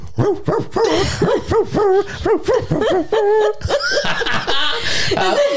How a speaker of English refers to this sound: jingle bells. Jingle bells in dog form. Yeah. And a wolf howling.